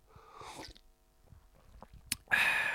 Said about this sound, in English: But anyway, I'm just going to take a quick slurp of my Barry's Berry Tea.